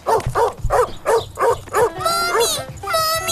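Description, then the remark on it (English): A dog in the children's TV show Caillou barks five times in a quick, steady rhythm, loud, then the barking gives way to a high, wavering whine or cry that carries on to the end. “That doggy scared me!”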